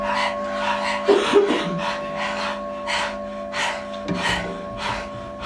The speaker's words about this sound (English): next exercise is going to incorporate a breathing technique called Breath of Fire. And let's all do this together. Staying in the position that you're in, we're going to open the mouth, stick out the tongue, and begin to pant rhythmically like a dog.